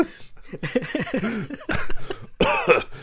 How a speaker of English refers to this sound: smoking is not as sexy if you cough.